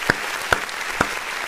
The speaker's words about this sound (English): I love that applause. I don't know what it is.